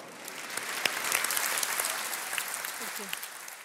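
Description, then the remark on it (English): Steady, friendly applause from an audience after an entrepreneur's presentation about her eye-care company, a dense wash of many hands clapping at a moderate level with a few sharper individual claps standing out, continuing throughout. “gets friendly applause from the audience when she's done with her presentation.”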